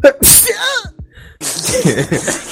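A single loud sneeze bursts out with a sharp breathy blast, followed by a short pause before people start talking.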